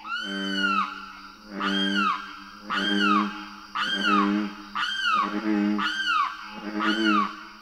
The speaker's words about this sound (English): A loud chorus of green tree frogs and booming bullfrogs is interrupted by the insistent calls of a limpkin. A tall, wading bird whose curved bill is well-suited to its diet of apple snails, and whose unearthly screams evoke the wildness of its home.